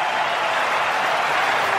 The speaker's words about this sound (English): Two fielders on the leg side for Travis Head. It won't matter as he drives through cover to the applause of the Adelaide Oval crowd. There's no place like home.